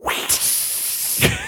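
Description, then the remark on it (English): A voice imitates the blood spray in a 1993 movie when someone is cut with a sword, a long, loud, steady hissing "psssh" lasting over a second, with two brief sharper spurts, one early and one near the end. “I remember this movie has like that very tropey blood spray animation.”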